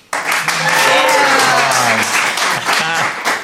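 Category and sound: crowd, audience clapping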